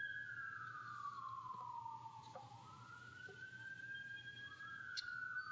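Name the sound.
police sirens passing outside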